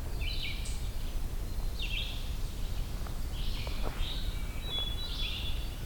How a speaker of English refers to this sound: Eastern towhee. Probably that same towhee from last night.